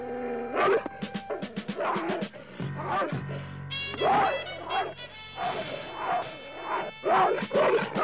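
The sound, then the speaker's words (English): A bulldog barks repeatedly in loud bursts, with yips and whimpers mixed in, over a busy, cluttered background of other noise. “I kind of love the bulldog. I really like the bulldog.”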